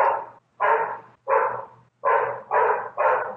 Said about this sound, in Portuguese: O cachorro chama François Sagat. François Sagat? É. Já vai ter trilha nesse extra. Vamos fazer assim, ó. Deixa o seu microfone aberto e deixa o bonito do Sagat dar umas latidas que eu vou tentar tirar no ruído depois. Tô deixando, tá latindo.